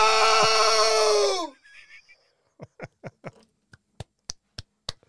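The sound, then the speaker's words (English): A man lets out a loud, sustained battle scream imitating the movie character Drago, holding for over a second before the pitch drops off, followed by a few short breathy bursts like chuckles. “Can I do my Drago scream real quick from the top of the mountain?”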